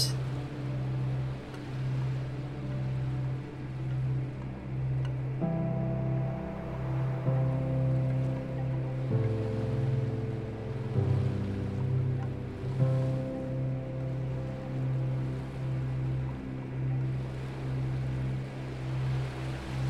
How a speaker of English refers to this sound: Breathe in with the incoming ocean wave, and breathe out with the wave releasing back out.